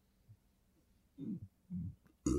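Two short, low, guttural burps sound up close, one after the other, followed by a sudden louder burst at the very end; no one is talking.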